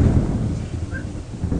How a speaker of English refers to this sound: Thunder came in the room.